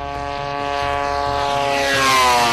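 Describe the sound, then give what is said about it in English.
A propeller drone's small two-stroke snowmobile engine drones steadily and loudly, its buzzing harmonic whine rising and sweeping in pitch as it passes by, with no voices; the small aircraft carries an expensive camera through the sky. “The engine is a two-cycle snowmobile engine pushing an expensive payload through the sky, an expensive camera.”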